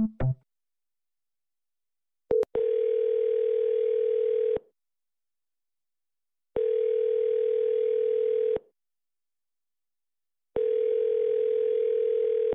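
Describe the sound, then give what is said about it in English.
A phone's incoming-call tone sounds three times, each a steady electronic hum lasting about two seconds with equal pauses between, loud, with no one speaking. “That's literally a phone call that's coming in right now.”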